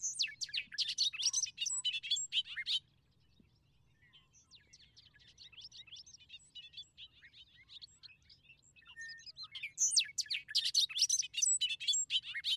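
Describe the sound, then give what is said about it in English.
A bobolink's bubbly, tumbling song bursts out loud, fades to softer scattered notes in the middle, then returns in a rapid, jangling rush at the end. “The song of the bobolink, to me, expresses hilarity.”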